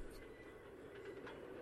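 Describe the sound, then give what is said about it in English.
A new toy train set with a caboose runs along its tracks with a steady, continuous rumble and faint clatter, fairly quiet and even throughout the short stretch. “Oh, my new toy train set's arrived.”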